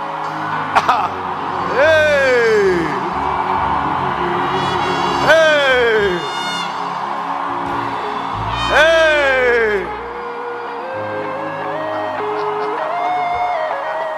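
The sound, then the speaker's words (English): A large crowd shouts continuously in a dense, roaring clamor, with several loud, drawn-out sliding cries rising above it at intervals of a few seconds. “You see, I didn't ask you to stop shouting. Wait till I ask you to stop.”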